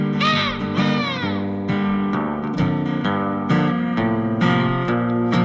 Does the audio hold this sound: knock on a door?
no